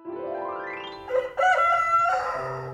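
A rooster crows once, loud: a rising opening note that breaks into a strained, wavering cock-a-doodle-doo, sustained for a couple of seconds with no one talking.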